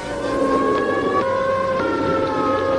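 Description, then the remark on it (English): A civil defense air raid siren wails continuously at a steady high pitch, loud and sustained with layered tones, over a faint hum of traffic, with no voices, in Times Square, New York, during the 1954 Operation Alert civil defense drill. “Less than 2 minutes after the takeover signal, the streets were cleared.”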